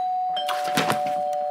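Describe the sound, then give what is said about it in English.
A doorbell rings with a steady electronic tone, overlaid by a brief buzzy, rattling burst in the middle. It is fairly loud, with no one talking. “That better not be at the door.”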